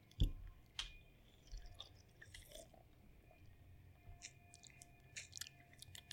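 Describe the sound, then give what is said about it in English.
Quiet sips of a shaken, foaming caffeinated energy drink with small wet slurps and mouth clicks, a soft swallow, and faint fizzy drips scattered over a few seconds, with no one talking. “Yeah, let's get that sip in.”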